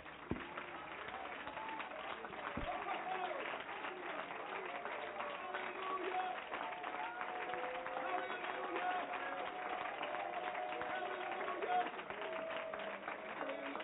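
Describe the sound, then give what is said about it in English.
After a prayer, an audience claps hands in praise to God steadily for about fourteen seconds, a dense, even wash of applause at a constant loudness, with voices calling out and cheering over it. “Now let's clap our hands one more time unto him.”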